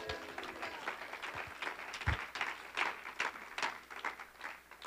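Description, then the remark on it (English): An audience claps their hands to Jesus in a dense, continuous burst of applause, with irregular louder surges and a brief low thump partway through; no one speaks over it. “Oh, clap your hands to Jesus.”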